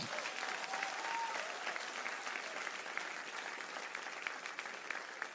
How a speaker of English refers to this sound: If you're going to clap, do it well.